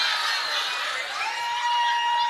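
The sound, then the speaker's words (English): A loud, sustained burst of crowd cheering with excited shouts and whoops, steady throughout and filling the whole moment with no voices speaking over it. “What are you cheering for?”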